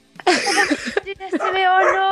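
A dog whimpers and lets out a few short yips, a run of high, wavering whines lasting a couple of seconds.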